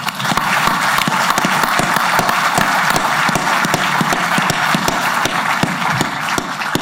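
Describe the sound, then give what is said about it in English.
A large crowd claps steadily for several seconds in applause welcoming a new player to the New York Jets, a dense, continuous wash of many overlapping hand claps at fairly even loudness, with no voices standing out. “I'd just like to have a round of applause right there.”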